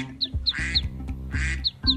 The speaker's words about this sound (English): These little baby ducklings were waddling along, enjoying the sunshine, when they accidentally fell into an underground drain. Uh-oh. Luckily, someone walking by heard some little quacking noises.